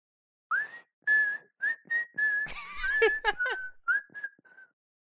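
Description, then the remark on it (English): A person whistles a film theme melody in a clear, steady tone, with several sustained notes and a quick rising and falling run in the middle, fairly loud with no talking. “Do the Kill Bill whistle.”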